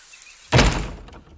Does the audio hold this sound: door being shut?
yes